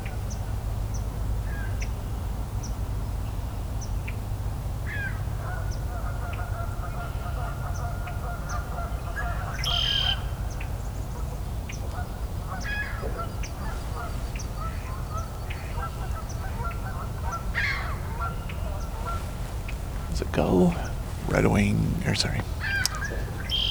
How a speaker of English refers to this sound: Some more ducks.